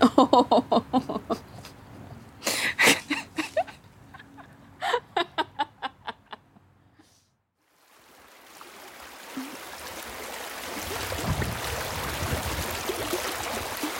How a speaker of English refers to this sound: We leave you this week with the sound of the Eno River as it flows through Durham, North Carolina.